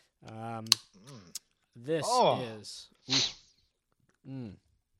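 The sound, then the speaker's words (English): A Valdez Coffee Stout beer from Pisgah Brewing Company, Black Mountain, North Carolina, is cracked open with a single sharp pop amid drawn-out vocal sounds, followed by a brief breathy hiss and a short satisfied voice after a pause. “This is he's drinking it.”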